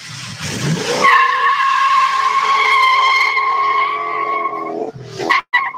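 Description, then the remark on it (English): A loud engine of an original four-speed classic muscle car with a new intake, new carburetor and loud dual exhaust roars, settling into a sustained high-pitched whine for several seconds before briefly cutting out and surging again at the end. No one speaks. “New intake, new carburetor, so didn't bother with the old ones. It's better just to buy new with it. It sounds mean too.”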